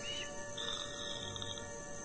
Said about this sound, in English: You find yourselves standing on an old, sodden road. The sound of fat, bloated flies fills the air.